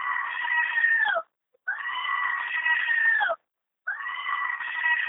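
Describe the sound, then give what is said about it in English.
Frantic, piercing screaming comes in three long, sustained bursts separated by brief silences, loud, with a shrill, wavering quality and no talking. “Like, but, like, I'm not listening to this fucking crazy-ass fucking screaming.”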